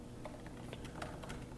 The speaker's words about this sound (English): Right, type in. What am I typing?